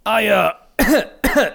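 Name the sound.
fake coughing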